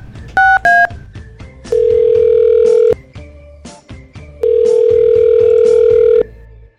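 Two quick keypad beeps, then an outgoing call ringing: two long, steady ring tones separated by a pause of silence, fairly loud and clear with no voices.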